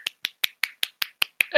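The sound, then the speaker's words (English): About eight sharp, evenly spaced slaps made with an elbow to mimic applause, each crisp and fairly loud, ending as a voice cuts in. “I can get a round of applause. Let me use my elbow.”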